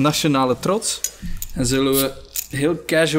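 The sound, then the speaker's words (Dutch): Drink bottles clink and knock together as they are handled, a few light glassy taps mixed under continuous conversation between people. “Dus ik heb alvast voor de drank gezorgd.”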